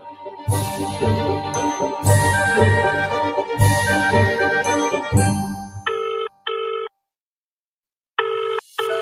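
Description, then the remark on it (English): A telephone rings in repeated electronic bursts, first with a musical swell underneath, then alone in short clipped pulses separated by silence. Loud, no voices. “And it all begins with a phone call.”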